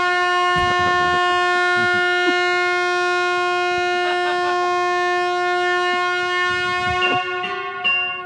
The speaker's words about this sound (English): Right? That's the train.